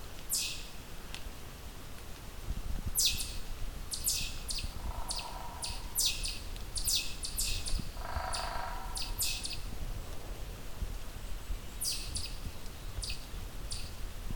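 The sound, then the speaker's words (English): A pine warbler's soft trill song amid repeated bright, sharp chip notes that come in short bursts, with a faint lower warble now and then over steady outdoor background hiss. “There's our soft pine warbler song. Soft trill.”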